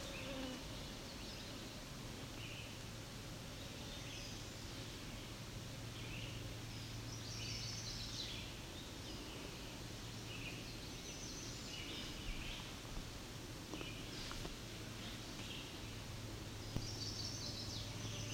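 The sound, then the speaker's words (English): A chestnut-sided warbler sings faintly, two short bursts of bright notes, over a steady drone of insects and a low outdoor hum. “That sounds like potential chestnut-sided warbler.”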